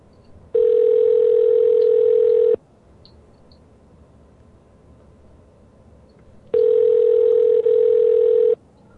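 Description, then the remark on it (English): An outgoing phone call's ringback tone: two steady, buzzy rings about two seconds long, separated by a roughly four-second pause, clear and loud against faint background hiss, with no talking. “we're getting a ring for Phil and everything”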